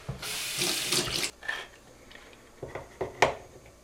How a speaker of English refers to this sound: So the first thing we need to do is open up a can of tomatoes and drain all the excess water.